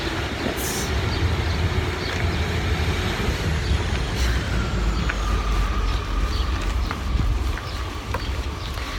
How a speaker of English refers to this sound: I think there's a train there as well. Oh yeah, we'll show you the Shepley train station.